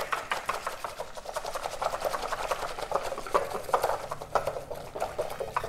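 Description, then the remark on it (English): Rapid, steady whisking of egg yolks, sugar and about 160 milliliters of water in a bowl until frothy, a continuous run of quick ticking swishes with a wet, frothy edge, with no talking. “And I'm just going to whisk this all together until the egg yolks are nicely mixed into it.”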